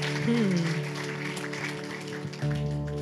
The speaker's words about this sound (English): Let's just give Jesus a round of applause.